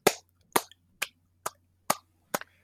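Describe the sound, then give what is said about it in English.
Six slow, evenly spaced hand claps, each a sharp, crisp smack with a quick decay, delivered in a deliberate, unenthusiastic rhythm over a faint low hum with no voices. “I'm gonna go ahead and give you that golf clap.”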